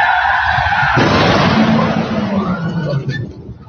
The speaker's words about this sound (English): Now this is the guy running. He heard the crash, so he's running to the accident scene.